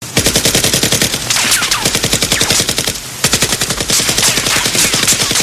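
Loud, rapid AK-47 automatic gunfire, sprayed at agents by their cars, rattles off in long sustained bursts, sharp cracks tightly spaced, with a brief break partway through before the firing resumes just as fiercely. No voices are heard.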